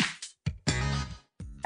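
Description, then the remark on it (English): A frog croaks in a few raspy bursts: two short calls, then one long drawn-out croak, and another starting as it ends. No one speaks. “Hello, Mr. Frog. Oh, come back.”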